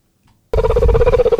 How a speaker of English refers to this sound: It's like a chirping. That's a cheetah?